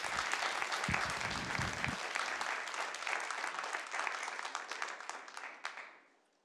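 A crowd applauds steadily and loudly for several seconds, a dense wash of many hands clapping at once, before the clapping thins out and fades away at the end.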